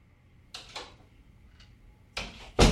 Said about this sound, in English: Nick wasn't fully awake until the front door had opened and closed.